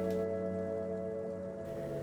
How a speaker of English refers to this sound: I opened the show with a couple of wet, rainy, watery field recordings that I made recently on the west coast of Cork, in Ireland, on the Beara Peninsula, where I went to visit an Irish Atlantic rainforest, which was very beautiful.